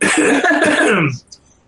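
A single loud, raspy cough lasting about a second, trailing off into a faint breath afterward.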